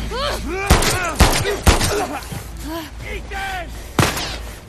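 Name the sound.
gunshots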